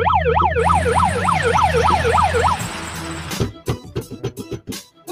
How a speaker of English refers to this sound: Put the siren on.